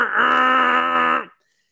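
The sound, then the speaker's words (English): A voice imitates a truck air horn with one loud, steady, buzzy honk held for over a second, then cuts off abruptly into silence. “They get to let that huge honk that the truck's got”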